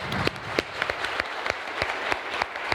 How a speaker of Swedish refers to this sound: Stort tack till panelen och stort tack till alla er som var här. Vi avrundar med en applåd.